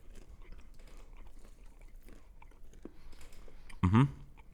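Someone bites into a chewy chocolate turtle candy made with honey, with one loud, crunchy bite near the end standing out against quiet, soft mouth noises before it.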